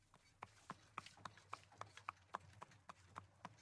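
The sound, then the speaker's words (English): Horse hooves clip-clop at a steady, brisk pace as a horse pulls a buggy through Victorian East London streets toward Bancroft Road Jewish Cemetery, a dozen or so sharp knocks with a low rumble underneath like wheels rolling. “The horse and buggy pick up, and you can hear the shouts and calls of people nearby”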